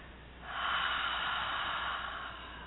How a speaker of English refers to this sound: So without further ado, sit back, let's just take a deep breath in, breathing up from the base of the spine, and then exhaling out of the mouth once you're filled up at capacity.